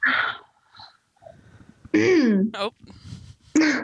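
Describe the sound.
A person clears their throat in a few rough, voiced bursts, with a gravelly rasp at the start and a descending, harmonic hum in the middle.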